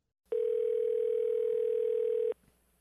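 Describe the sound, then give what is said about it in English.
A single steady telephone tone while placing a call hums at a constant pitch for about two seconds, loud, then cuts off abruptly, leaving quiet background. “Let's see if we can get him on the phone and break the news to him in person.”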